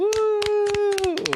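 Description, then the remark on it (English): A brief round of applause: about seven sharp hand claps at an uneven pace, over a steady sustained vocal tone like someone holding a cheering note that dips at the end. “So can we get a round of applause?”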